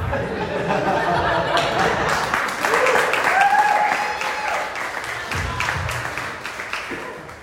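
audience cheering and applause

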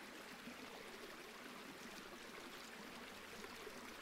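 gently flowing stream water

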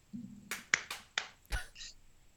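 hand claps

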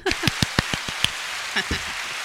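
audience applause

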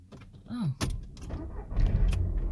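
car engine starting

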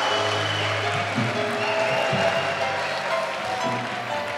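audience clapping

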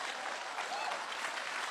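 audience hand clapping

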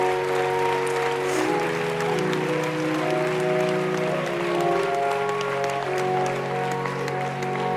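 audience clapping hands

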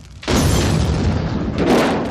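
car bomb explosion

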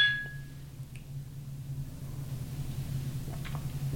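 glasses clinking

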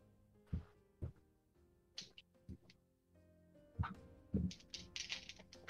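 dice rolling

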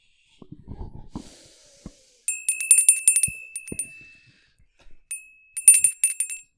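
bell rung twice

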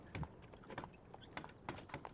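horse hooves clip-clopping

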